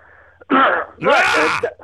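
Two loud, rough bursts of coughing and throat clearing, a shorter one followed by a longer, harsher, raspy one, with no talking.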